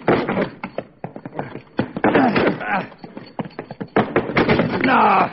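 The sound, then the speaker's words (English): Men strain and grunt while repeatedly thudding and banging against a heavy locked tool shed door, trying to break it open: a rapid series of hard knocks and rattles mixed with effortful vocal noises. “That door won't budge.”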